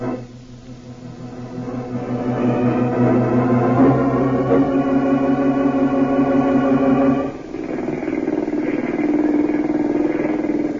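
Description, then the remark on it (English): A boat engine drones steadily with a low, buzzing harmonic hum, loud and continuous, shifting to a rougher, slightly different pitch partway through with no voices present. “Norma, this boat engine sounds kind of peculiar to me.”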